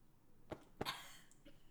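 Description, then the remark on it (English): Two short, forced coughs in quick succession, fairly sharp, with a faint breathy trail after the second and no talking around them. “Don't make a coughing noise.”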